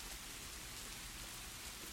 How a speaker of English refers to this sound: Water puddled inside the still-empty stadium. The beating rain sounded like a snare drum on the bleachers. The metallic clanging could be heard more than almost any crowd.